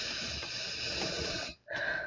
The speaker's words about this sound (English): I like how it picked up my breathing.